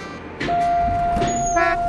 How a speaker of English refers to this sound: Oh, better dash. There's the monorail now. Made it. This monorail is headed for station.